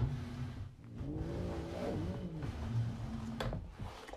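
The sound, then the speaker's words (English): A cat makes a drawn-out, wavering yowl whose pitch rises and falls, heard over a steady low hum, followed by a few fainter sounds. Nobody speaks. “Anyway, yeah, the cat's making noises.”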